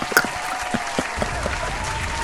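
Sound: applause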